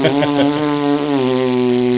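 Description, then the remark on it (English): A person blows a long, steady lip raspberry imitating a man's fart while peeing, a low buzzing tone held for about two seconds with a slight dip in pitch midway, with no talking. “While he was peeing, he would fart like that every fucking day.”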